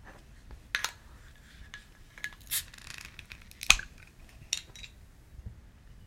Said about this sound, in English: Right, let's get this beer open.